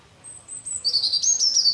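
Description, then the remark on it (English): A robin sings a thin, high whistle that breaks into a quick, bright warbling trill, clear over a quiet background, with no talking. “They're all year round, robins.”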